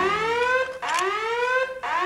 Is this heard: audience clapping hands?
no